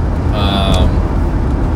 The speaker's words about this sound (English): One, right before I got in the car to go home, you're probably hearing car noise anyway in the background, so apologize for that, but it is what it is.